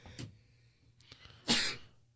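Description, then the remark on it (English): A single sharp sneeze, the second of the morning, bursts out loudly after a brief faint intake of breath, then quiet room tone follows. “Second sneeze of the morning.”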